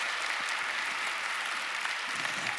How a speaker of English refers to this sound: Well, that is a phenomenal story that God has given us in the Bible, but I want to give a little bit of applause to those who just performed it in that way. Didn't they do a great job? Fantastic.